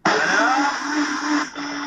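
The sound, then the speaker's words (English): A powerful blender blends soaked rice with water, vegetable oil, salt, sugar and instant yeast, running loudly and steadily with a dense whirring roar and a low motor hum, briefly dipping near the end before continuing at a slightly lower level. “Into a powerful blender along with water, vegetable oil, salt, sugar, and instant yeast.”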